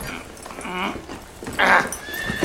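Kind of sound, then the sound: animal, horse neighing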